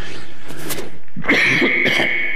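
A short burst of coughing, a couple of harsh bursts close together, fairly loud in a room with no one talking.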